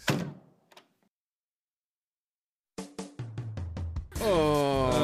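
A door shuts with a solid thud and a brief rattle, then a couple of seconds of silence before a short, punchy burst of music with rhythmic hits and a rising tone.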